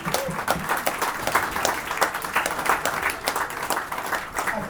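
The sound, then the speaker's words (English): A steady round of applause from a group in a room at an evening awards event, for a large magazine design entry, many hands clapping in a dense, even patter for several seconds with no break, moderately loud throughout. “Yeah, round of applause.”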